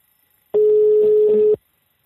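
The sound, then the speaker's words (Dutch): A single one-second ringback tone from an outgoing phone call: a steady, fairly loud electronic hum heard alone, with silence before and after. “Ik bel hem op en ja, het is een telefoongesprek.”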